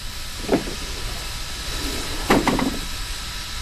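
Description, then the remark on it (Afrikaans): A steam train sits hissing steadily at a standstill, a constant broad rush of steam with a brief knock early on and a louder cluster of clanks near the end. “Daar's iemand op die trein. Hy gaan die deur oopmaak.”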